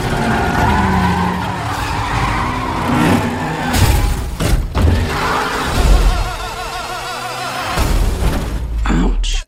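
Cars skid with loud, drawn-out tire squeals over roaring engines, broken by several sharp, heavy crash impacts, including one near the end, all intense, as Dom smashes up everyone's cars.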